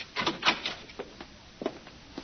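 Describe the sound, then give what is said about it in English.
A hotel room door being unlocked and opened: a quick cluster of metallic clicks and rattles, then a pause and a few more sharp knocks and clunks. Moderately loud, with no voices. “Guess I'd better unlock it.”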